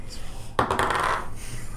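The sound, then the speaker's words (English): A sharp clatter of dice tumbling across a hard table for a persuasion roll in a tabletop game, a burst of bright rattling clicks that settles within about half a second, fairly loud with no talking. “I'm not being as dramatic with the dice rolls as I should be.”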